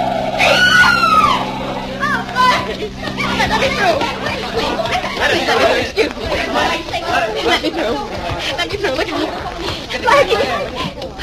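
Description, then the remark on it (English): A sharp tyre screech and blaring tones of a car skidding on a street and knocking down a pedestrian open loudly, then give way to an excited crowd murmuring and calling out. “The car knocked me down, but I think I'm all right.”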